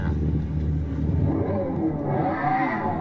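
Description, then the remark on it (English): A low, steady engine-like drone with a rising, whining tone toward the end, an artificial exhaust sound made by an electric vehicle revving up, heard alone and fairly loud without any talking. “Just keep in mind, everything about the exhaust is artificial. From idle to that sound, everything.”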